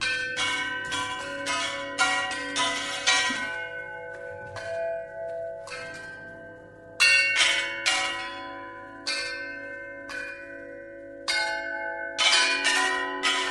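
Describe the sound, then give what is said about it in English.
A metal gong made from a circular saw confiscated from an illegal logging operation is struck over and over by an elephant in an elephant orchestra, in an irregular rhythm, loud, each hit leaving a bright, shimmering ring that overlaps the next. “Some of the instruments in this unique orchestra were custom-made for the elephants, including a gong fashioned from a circular saw that had been confiscated from an illegal logging operation.”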